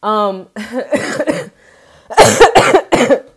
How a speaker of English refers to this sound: every time I laugh, I cough.